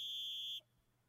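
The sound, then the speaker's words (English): A single shrill halftime whistle blast, a steady high-pitched tone held for about half a second before cutting off abruptly, leaving only a faint low hum. “Halftime. Little whistle.”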